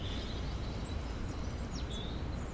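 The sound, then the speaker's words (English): Faint bird calls chirp sporadically through a steady wash of outdoor background noise, with a couple of brief, higher tweets standing out near the end; birdsong within half an hour of sunrise, around 8:02 in the morning. “But it's a good time of year to start listening to birdsong.”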